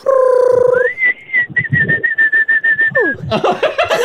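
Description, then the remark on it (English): A person whistles an imitation of a chickadee call: a steady low note sliding up into a long high held tone, then quick falling slides and a burst of chirpy whistles, fairly loud. “A little chickadee there.”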